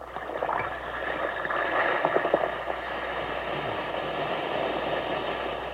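An Alka-Seltzer tablet fizzes in water: a steady, dense hiss with a scattering of tiny crackling pops, holding at an even, moderate level for several seconds with no voices.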